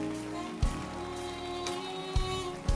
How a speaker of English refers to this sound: Clap your hands for them as they go. Keep clapping your hands. Don't stop clapping. Don't stop clapping.